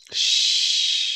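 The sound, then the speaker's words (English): A single deep, forceful breath drawn in as a breathing demonstration, a steady, loud, airy rush lasting about a second, with a brief puff at the start and no talking. “You're breathing. That's how I breathe.”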